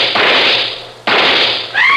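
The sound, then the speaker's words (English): Two sharp rifle shots about a second apart, each a loud crack with a long hissing decay, followed by a brief high-pitched wavering tone at the end. “I raised my rifle and...”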